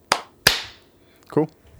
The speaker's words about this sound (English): Okay, so I'm recording right now, starting here, and then yeah, we can clap. All right. Want to just go 3, 2, 1, clap together?